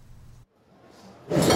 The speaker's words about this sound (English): Cutlery is laid on a table.